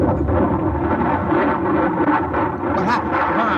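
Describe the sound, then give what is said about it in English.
A bomb explosion rolls out as a deep, loud, continuous rumbling roar that stays heavy and steady for the whole few seconds, with no voices over it. “The bomb must have blown.”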